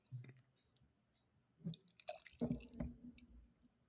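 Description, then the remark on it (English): A drink is poured gently from a can, heard as a few soft, irregular drips and small liquid splashes with quiet pauses between them, and no one speaking. “Like I'm trying not to pour as hard after the mishap last time.”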